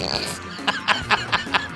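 A guitar with a buzzy, flatulent tone plays a quick run of five sputtering notes in a steady rhythm, following a brief sustained droning tone at the start.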